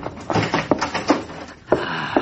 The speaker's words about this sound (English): Get that door unlocked, will you? Trying to find the right key.